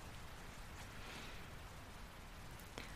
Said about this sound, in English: There's also rain sounds that a lot of people look for. You can hear it starting. Blip, blop, bloop. Drop, drop, drop. Bitty, patter, bitty, patter, bitty, patter. And it's actually one of the most searched sounds online.